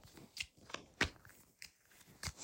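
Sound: shuffling tarot cards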